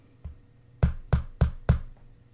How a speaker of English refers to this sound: A brittle sound like a skeletal finger clicking against the glass.